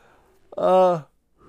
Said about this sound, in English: Sorry, I'm yawning. It's Tuesday morning.